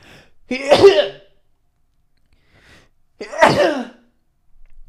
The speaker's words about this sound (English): Like, I don't even think I'm going to cut that sneeze out. Fuck it. I'm not going to do it. That's how raw this podcast is going to be.